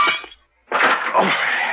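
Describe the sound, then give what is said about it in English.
Window glass smashes in a short, loud burst as a man crashes through the windows out into the grounds, then after a brief pause a longer crash follows as shards keep shattering and tinkling, harsh. “hesitated for a fraction of a second, and then crashed his way through the windows out into the grounds.”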